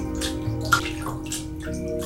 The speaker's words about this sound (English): Like a heron in flight, Abigail's palm glided across the foam before diving in and startling Swain.